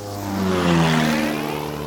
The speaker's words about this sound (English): We're here this early November dawn on the Platte River in central Nebraska. Out of the east, in the first light, flying low above the river's braided channels, comes a small aircraft.